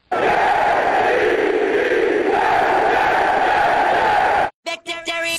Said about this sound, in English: Victory screech!